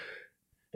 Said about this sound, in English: Excuse me. Bless you. I sneezed into my hand. That was weird. That was very Joe Biden of me. I meant to go for the elbow,